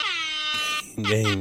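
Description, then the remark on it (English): Two loud, brassy air horn honks, blaring: a long steady blast, a brief pause, then a deeper, fuller second honk. “Honk, game.”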